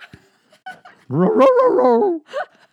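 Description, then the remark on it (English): A voice imitates a puppy named Frederico saying its own name. It gives a few short yips, then a long, wavering, whiny bark-like cry that rises and falls, followed by another quick yip, fairly loud. “The dog says its own name.”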